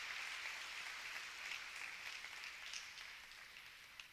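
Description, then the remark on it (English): An audience at a poetry reading claps steadily for about four seconds, a dense, even patter of many hands with no voices over it, holding a fairly constant level before easing slightly at the end. “Are you clapping because I said I'm going to close?”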